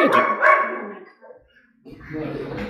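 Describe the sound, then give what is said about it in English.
A dog barks loudly, a short run of sharp barks, followed by a brief pause and then a person talking with more noise in the background. “Thanks, puppy.”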